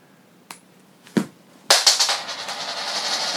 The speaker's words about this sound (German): Eine Münze, zwei Meinungen. Gut, dann werfe ich jetzt mal die Münze.